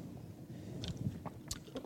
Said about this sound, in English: I'm sorry, I keep drinking water. My throat's really dry.